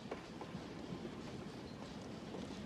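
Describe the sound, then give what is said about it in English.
A moving train rumbles steadily, a dense low roar with faint rhythmic clacks of wheels on the track, fairly quiet and continuous throughout, with no voices. “So after barely escaping from the FBI and the mob and Marvin, Jack and the Duke jump on a train where they have a moment of bonding around a fire.”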